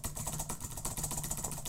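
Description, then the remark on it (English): A fast, continuous flurry of taps on a computer keyboard, rattled off like a drum roll for under two seconds, fairly quiet with no voices. “Do you want me to like do a little drum roll or something or?”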